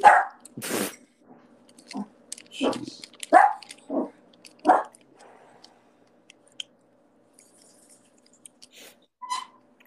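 A dog barks several times in quick, uneven, loud bursts over the first few seconds, then things settle into quiet with only faint scattered noises and one brief sharp yelp near the end.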